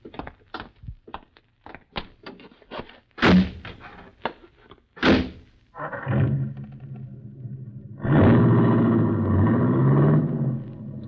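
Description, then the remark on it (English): Light clicks and shuffling, then two solid car door slams a couple of seconds apart, followed by a buggy's engine starting and revving louder as the vehicle pulls away. “Buggy. Yeah. Always promised myself I'd have one of these someday.”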